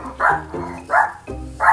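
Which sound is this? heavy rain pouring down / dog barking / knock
dog barking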